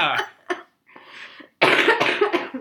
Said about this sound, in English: Yes, that was me coughing.